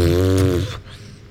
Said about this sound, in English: That was a full-blown whiskey spit take that just happened.